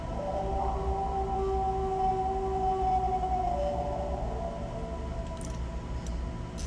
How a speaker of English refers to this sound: Whatever this was outside of our tent was large. All that bear thought disappeared when I heard the howling outside of our tent.